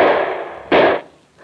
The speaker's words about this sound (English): Duck, they're shooting.